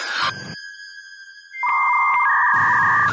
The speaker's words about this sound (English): He's got a dial up. It does the modem sound.